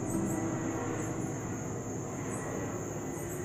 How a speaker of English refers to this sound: Okay, guys, I prayed against too many car noises, but I forgot to pray against the airplanes, you know. I said, God, please, not loud cars. And one just passed along with an airplane